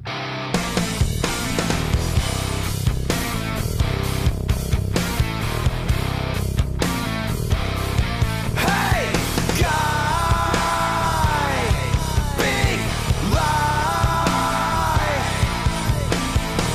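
A loud, dense song plays continuously, with driving drum hits and a thick distorted wall of sound; partway through, a wavering, sustained vocal or lead melody rises above the mix.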